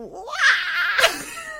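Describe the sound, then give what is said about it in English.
A voice does a shrill, high-pitched imitation of the scream of Toad from Mario, swooping upward then holding a strained, wavering cry for about a second and a half, loud and alone. “Yeah, I was going to ask you if you can do a Toad scream.”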